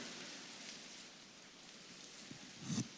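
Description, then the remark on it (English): A dense, steady crackle of many people tearing paper cards at once, each card ripped into at least six pieces; a soft rain-like rustle throughout with one louder rip near the end; no one speaks. “Now, take the card, and we're going to rip it into at least six pieces.”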